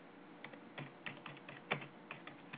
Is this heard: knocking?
no